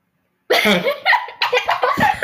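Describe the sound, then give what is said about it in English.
A burst of coughing blends into breathy laughter, loud, with a few rapid choppy pulses after half a second of silence. “So, it's a combination of coughing and laughter.”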